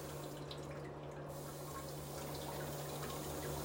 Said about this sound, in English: So there's a feminine and then there's a rear. There's a real section. And I just fucking bidet'd with the feminine. With the feminine version section or whatever. Oh, this water don't even get warm.